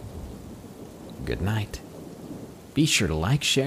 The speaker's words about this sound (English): The next time you're in bed and a thunderstorm rolls in, you might want to focus more clearly on the sounds you hear around you, because that's when things come out and they use the sounds of rain as cover.